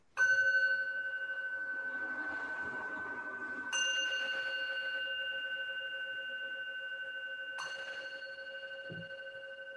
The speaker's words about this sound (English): What is the tonality of hearing the sound of the bell?